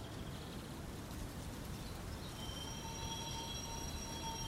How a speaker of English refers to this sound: Subway, man-made. Hey, that's a train. That's the subway.